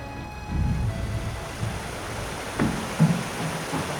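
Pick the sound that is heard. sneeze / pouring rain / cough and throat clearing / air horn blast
pouring rain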